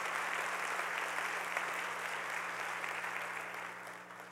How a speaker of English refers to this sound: Come on, give the Lord a clap of praise today, because He's the one who gives us hope.